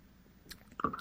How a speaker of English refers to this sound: Are we ready to take a sip